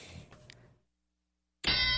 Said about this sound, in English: Ring that bell, Tony. Ring that bell, man.